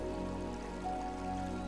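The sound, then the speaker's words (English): Gently flowing, crystal-clear stream water washes around large flat rocks, making a soft, steady, continuous sound with no breaks, blended with a low sustained tonal hum underneath. “The water gently flows around the large flat rocks at the surface.”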